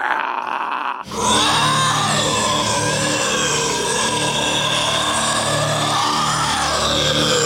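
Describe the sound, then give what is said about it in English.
A voice lets out a loud, sustained, warbling screech imitating a screaming alien, bursting in after a second of quiet and holding on without a break to the end. “That's how I'm imagining all these aliens actually are, where they're just fucking running around with their predator vision and they're just like screaming the entire time.”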